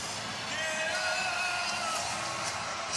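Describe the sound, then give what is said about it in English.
A large arena crowd of Rockets fans at an NBA playoff game against the Warriors roars and cheers after the Rockets urge them to get up, a steady, dense wash of noise with scattered yells and whoops rising above the sustained din for the full three seconds. “The Rockets exhorting their fans to get up and cheer. They respond.”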